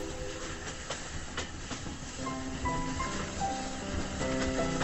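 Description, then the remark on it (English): A train rumbles past with a steady clatter of wheels on the rails, and partway through sustained horn-like hoots ring out over the noise. “And the corn, like drunken grenadiers, topples tarnished, whispering at the hooting train.”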